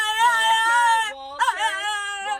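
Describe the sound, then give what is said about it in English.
A French bulldog howls in long, wavering, high-pitched tones, one drawn-out howl breaking briefly before a second rises and trails off. “Also, for the most part, they are all videos of Frenchies howling.”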